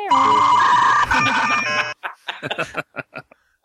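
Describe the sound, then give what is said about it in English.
A dial-up modem connecting: loud, layered electronic tones and harsh screeching for about two seconds, which then break off into a string of short, choppy bursts. “I tried to get a modem sound for it.”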